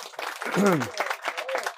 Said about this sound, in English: a big round of applause for Moshe Chaim Stefanski